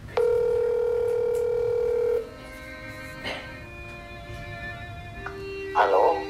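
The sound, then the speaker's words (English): A steady telephone dial tone hums for about two seconds, followed by a few short, thin dialing beeps and a brief rustle; the line stays quiet, with no one speaking. “The phone call.”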